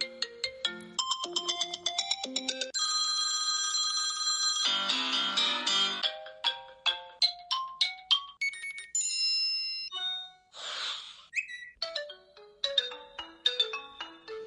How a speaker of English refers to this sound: And just to remind you of the sounds of the phones and just see, does this annoy you or does this excite you when you hear this?